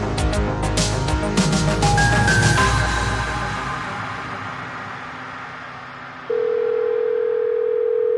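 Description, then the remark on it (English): A telephone call ringing out while someone tries to reach a person by phone: a steady, loud electronic phone tone starts near the end, after several seconds of noisy, crackling static with faint tonal bleeps. No one speaks. “For the past 8 hours, I had been trying to get a hold of Jimmy by phone.”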